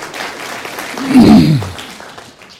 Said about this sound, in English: I think we need to say amen or clap or something for these people and the job they've done.